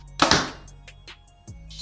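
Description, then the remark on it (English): A compound bow (Evoke 31, set at 29-inch draw length, 72 pounds, 90% let-off) fires a 550-grain arrow in a speed test, measured at 266 feet per second, with a single sharp, loud thwack and a brief rattling decay, followed by a few faint clicks and a soft knock near the end. “Now our 550 grain arrow.”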